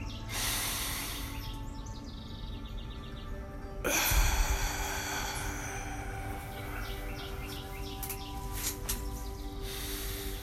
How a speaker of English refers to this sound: So just like any other episode, family, we're going to begin this episode with breathing. In your nose, hold 4 seconds and release.